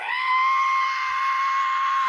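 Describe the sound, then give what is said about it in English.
A person vocally imitates a screeching whistle: one loud, shrill, steady tone held for about two seconds, then cut off abruptly, with no other talking. “I was in the bathroom taking a shave, and I heard a screeching, between a screech and a whistle.”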